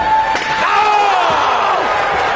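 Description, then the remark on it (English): A single sharp, loud steel chair shot to a wrestler's head lands early on during a wrestling match, cracking over the steady roar of a cheering arena crowd with voices calling out in the background. “Chair to the head.”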